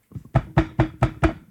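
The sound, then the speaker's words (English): Rapid knocking on a door, about five or six firm, evenly spaced raps in a quick burst, loud, with no voices. “I know you're in there. Open the door.”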